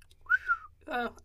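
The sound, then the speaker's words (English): A short human whistle into a microphone, a single clear tone gliding upward then falling, followed by a brief breathy, harmonic burst like a second attempted whistle; fairly loud, with no talking. “I forgot how bad whistling sounds on the mic.”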